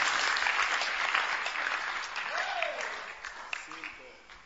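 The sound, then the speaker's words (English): An audience claps steadily, a dense crackle of many hands that gradually thins and softens, with a brief vocal tone rising and falling midway. “I don't know what you're clapping for, but you should be clapping for God.”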